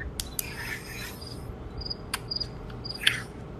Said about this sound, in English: Where the hell are you where there's crickets? I'm just out outside. I just got done working out. Where are you at? How is there a cricket? I don't know.